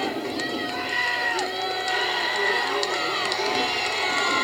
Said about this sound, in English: And you can hear the Panther stands getting riled up.